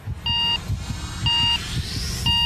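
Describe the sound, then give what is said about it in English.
Three evenly spaced electronic countdown beeps, one each second, from an on-screen countdown before a missile test launch from a mobile launcher, ring out clearly over a low rumbling background, with a faint rising whine between the last two. “So we can see them wheeling the thing out and raising it up on a mobile launcher, and then there's an on-screen countdown.”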